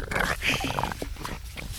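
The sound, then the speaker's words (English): Dogs scuffle close by, a continuous tangle of growls, snarls and snorting grunts over a couple of seconds, fairly loud with no talking. “Yeah, and the dogs are having a little skirmish by us, which is fine.”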